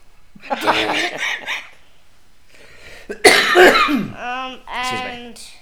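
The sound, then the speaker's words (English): A person with a month-long cough, not COVID, coughs and clears their throat in a few harsh bursts separated by a brief pause, followed by raspy, strained vocal sounds. “Excuse me, I'm coughing.”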